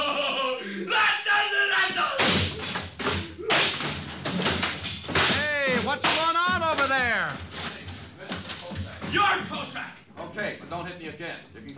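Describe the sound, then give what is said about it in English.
A scuffle of sharp punches, several quick thuds and slaps landing in bursts, mixed with grunting and shouting voices throughout. “Okay, but don't hit me again.”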